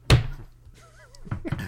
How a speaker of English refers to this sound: I'm going to kill this cat who keeps just opening up this cabinet door. Just opening it up and letting it shut.